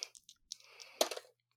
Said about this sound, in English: Let's roll the dice.